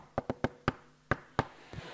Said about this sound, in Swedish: så första kontakten med Johan är man knackar den här typ